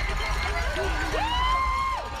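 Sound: crowd cheering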